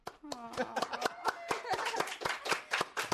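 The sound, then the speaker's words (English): A quick run of sharp hand claps, loose and irregular rather than steady, with voices and a bit of laughter mixed in underneath. “Todd is bragging about recommending this guy to be a PA, and he doesn't even know when to clap.”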